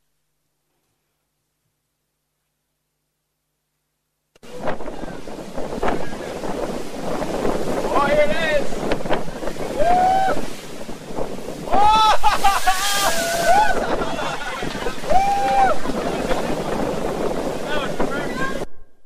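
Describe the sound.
After a silent start, a loud, steady roar of ocean surf pounding in, mixed with gusting wind buffeting the microphone, while a few voices call out over the noise.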